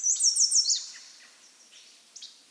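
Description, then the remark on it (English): A female American goldfinch gives her whiny call at 5:19 in the morning: a high, thin call rising in a few quick upslurred, whining notes, loud for under a second, then fading into quiet outdoor ambience with a faint later chirp. “An American goldfinch is making her whiny call”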